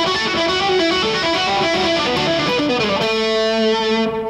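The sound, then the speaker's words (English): A distorted electric guitar plays a busy run of notes through a ducked reverb, then stops around three seconds in, letting a sustained chord and swelling reverb tail ring out loudly on its own. “Okay, so while you're playing, if you're playing something busy, you're just going to hear the reverb. You're not going to, it doesn't come out obviously until you stop.”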